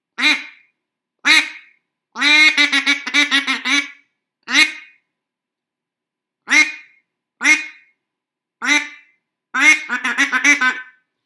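A black Duck Commander Shadow duck call blown in bursts in 28-degree cold: single loud quacks, then rapid descending runs of quacks, with short pauses between each sequence and no talking.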